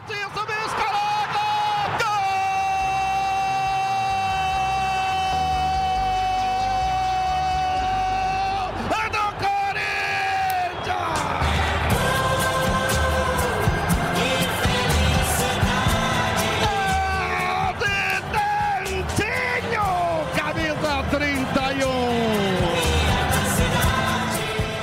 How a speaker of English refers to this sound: this song is absolutely famous in Brazil because in many radio stations, especially in Rio, São Paulo, and Minas Gerais, up to this day, when a team score a goal, they play the song in the background over the commentator screaming that was a goal.